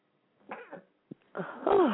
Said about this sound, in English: Oh, now I have to sneeze. Do you know what? There's nothing more worse than sneezing than when you're driving. Everybody sneezes, they shut their eyes. A bit worrying when you're driving.